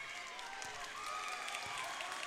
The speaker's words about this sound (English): The crowd comes to their feet here at Richmond. That was as emphatic of a win as you will get from the Blue Devils.